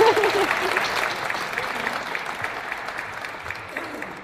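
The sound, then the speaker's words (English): An audience of University of Kentucky Wildcat fans claps steadily for guest Secretary Derek Ramsey, a dense wash of many hands that starts loud and gradually tapers off, with a brief vocal tone at the very start. “Well, go ahead and clap, Wildcat fans.”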